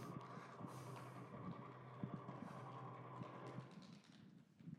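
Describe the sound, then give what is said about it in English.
A steady, droning hum with rhythmic thumping pulses repeating through it, like a train or muffled drumbeat. It plays continuously at moderate volume with no voices: radio waves from a rotating pulsar, a star that went supernova and collapsed in on itself, turned into sound. “it kind of shoots out radio waves from the center of this oscillation. And so when it's rotating at, it makes this noise.”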